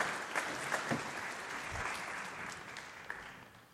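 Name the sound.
audience applauding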